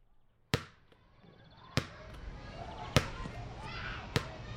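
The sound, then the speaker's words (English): A ball bangs against a shed wall four times in a steady rhythm, each sharp, hollow thump about a second apart, with a low murmur of background noise between hits. “The banging of the ball against the side of the shed begins to fade into the background as the shed door opens with a creak and you hear the ball stop”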